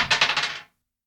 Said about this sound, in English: So this will be an easy roll. Yeah, roll a d20.